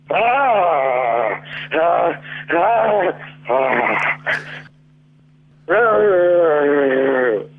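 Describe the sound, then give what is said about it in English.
A woman imitates a lion's growl in a string of loud, throaty vocal bursts, then a longer growl after a short pause, all with a thin, telephone-like tone over a steady low hum. “Okay, growl some more for me.”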